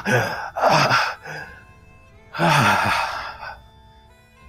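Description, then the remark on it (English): Two loud, heavy gasping breaths from a weak man taking a large breath again after he had stopped breathing, each a sharp rasping inhale trailing into a long airy exhale, separated by a short pause, with no talking. “And this has stabilized him to the point where he takes like kind of a large breath again.”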